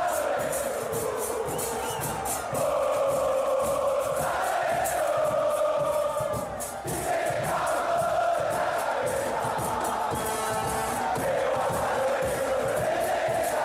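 A stadium crowd of football fans roars a sustained war cry, many voices chanting in unison at a steady pitch that shifts a few times, loud and continuous throughout.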